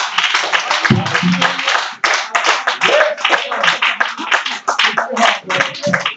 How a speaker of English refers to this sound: If you're going to help me preach tonight, why don't you clap your hands at Jesus right now?